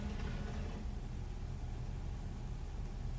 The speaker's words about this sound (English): Oh, I hear a truck. Oh, wait, it's Tuesday. That's probably the garbage truck.